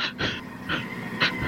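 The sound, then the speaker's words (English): A run of short, breathy sneezes: four quick hissy bursts of air spaced unevenly over a second and a half, fairly soft, with no talking. “Shushar? Gesundheit.”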